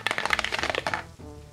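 rolling a six-sided die

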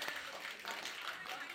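round of applause

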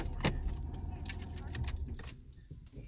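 car being turned off

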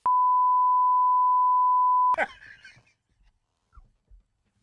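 censor beep

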